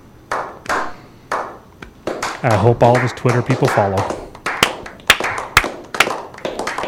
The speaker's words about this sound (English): You know what, guys? We got to give him a clap. You guys, I want to let you know, David Hogg is choosing not to have kids. So for that, I think we should all applaud him.